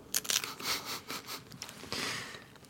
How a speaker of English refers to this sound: You see, you hear that Twiglet crunch in there? That's the difference.